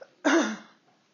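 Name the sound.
cough and throat clearing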